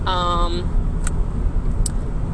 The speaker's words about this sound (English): I was just driving in my car today. Actually, I'm still driving in my car.